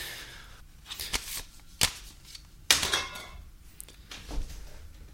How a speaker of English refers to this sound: I feel like Dave Mandel shuffling around my CDs here, my media.